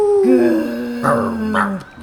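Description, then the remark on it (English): A person mimics a dog's howl, a sustained wavering voiced tone that slides gently downward with a couple of rising swells before trailing off, all in about two seconds. “Woof, woof. Ow.”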